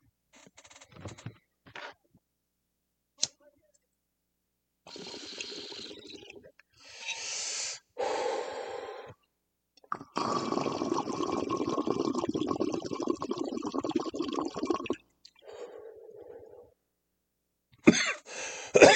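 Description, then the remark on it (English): A couple of sharp lighter clicks, then a long hissing inhale with a bubbling, watery edge as someone takes a hit of modified bananas, followed near the end by loud bursts of coughing. No one speaks. “Puff, puff, click, click, cough, cough, be an adult.”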